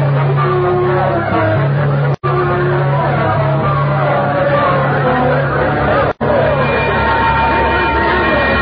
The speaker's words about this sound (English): My head was pounding terribly. I could hear all the noise and the people milling around. Everything was a jumble at first.